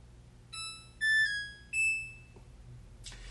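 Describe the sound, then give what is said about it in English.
A clothes dryer plays a short three-note electronic power-on chime, clear, bright tones in a brief melody, followed by a faint click and a soft rustle. “So let's turn on the dryer.”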